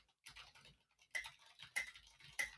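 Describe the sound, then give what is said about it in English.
Mechanical keyboard typing, given as a live demonstration picked up by a microphone: quick bursts of crisp, clacky keystrokes arriving in short clusters with brief pauses between them, fairly quiet overall and with no voices. “anybody who's got a mechanical keyboard, please turn your Discord to push to talk because other people don't need to listen to the clickety-clackety”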